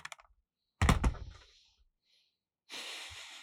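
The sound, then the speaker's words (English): A few quick clicks on a computer keyboard, then a heavy thunk of keys, a pause, and a steady hissing rustle near the end. No one speaks. “But I also love two of the other keyboards I've purchased from them, and I don't use any of them.”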